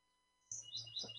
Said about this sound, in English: Are there birds over by you? Oh, do you hear birds? Yeah. Yeah, they're always around. I had the windows open.